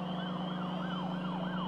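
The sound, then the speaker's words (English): Police sirens in the distance on a street wail in quick, repeating rising-and-falling sweeps, about two or three per second, holding steady and fairly loud over a low, constant engine drone, with no voices. “As he approached the streetlight that he could see out his bedroom window, he heard police sirens in the distance.”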